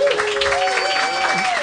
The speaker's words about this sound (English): Round of applause for Jeff Davis.